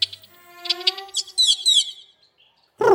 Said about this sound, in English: This carob grackle is giving the other birds a tutorial on how to eat dog food.